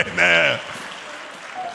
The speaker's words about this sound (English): Clap those hands and take your seat.